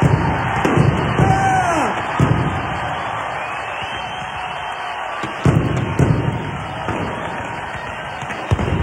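A huge crowd roars and shouts continuously while several heavy booming blasts punch through at irregular intervals as the disco records the crowd brought are blown up and the crowd storms the field, with the din staying loud throughout.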